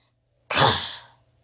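A single loud, sudden sneeze bursts out after a brief silence, its breathy spray trailing off over about half a second. No speech accompanies it.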